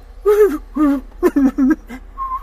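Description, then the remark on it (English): A human voice imitates a warbler's song, a celebrity impression called the John Boehner warbler, with a quick run of about six sung, warbling syllables. A brief whistled tone follows. It is loud, with no other talking. “And then I do some celebrity warblers, too.”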